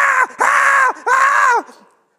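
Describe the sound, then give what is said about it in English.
A voice imitates a young woman screaming in a car as it hits a deer: three loud, sustained wailing cries in quick succession, the last one trailing off into silence. “She's screaming the entire time.”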